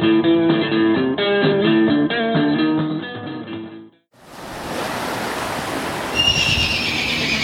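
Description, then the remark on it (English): At night, a single white horse screams and whinnies loudly and continuously for about four seconds as she struggles against a river's current at a river delta meeting the ocean, then cuts off as a steady roar of ocean surf takes over. “A single white horse is screaming as she struggles against the pull of the river's merciless current carrying her out to sea.”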